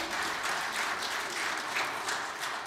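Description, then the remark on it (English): An audience claps hands together in sustained, dense applause, a steady wash of many overlapping claps at an even loudness with no voices standing out. “That's a good place to clap your hands right there.”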